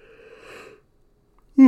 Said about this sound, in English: Excuse me. I apologize that I keep yawning. I'm not tired. Well, I'm tired, but I'm not like tired like I'm dragging.